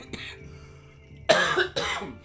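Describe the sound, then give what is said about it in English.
A couple of loud, harsh coughs right up close to the microphone, preceded by a softer throat noise, with no talking. “Jesus Christ, sorry for coughing into the mic.”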